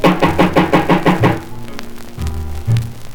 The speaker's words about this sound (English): Knock one more time to see what's gonna happen here.